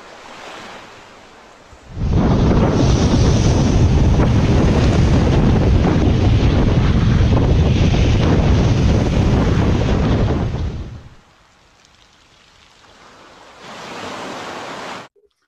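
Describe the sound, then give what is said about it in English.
A loud rush of sea waves washes up the shore over someone's feet for several seconds, then recedes into quiet before a softer, shorter surge returns near the end. No one speaks. “Let the sea come and wash your feet.”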